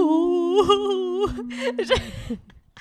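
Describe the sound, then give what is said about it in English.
A voice imitates a whale's cry, like Dory trying to speak whale: a long, drawn-out, wavering moan that bends up and down in pitch for about two seconds, then breaks into short, breathy fragments. “I'm thinking of Dory and when she's trying to speak whale, like, oh, you ghost.”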